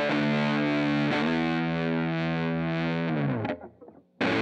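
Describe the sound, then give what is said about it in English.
An old electric guitar with a single-coil pickup and a 'rezzo glass' body (chambered wood core with a coating), played with distortion, rings out with thick, gritty sustained chords, changing once early on, then decays and briefly cuts out before a new loud strum kicks in. No one speaks. “Like a lot of these guitars, these old guys, they take the dirt pretty well.”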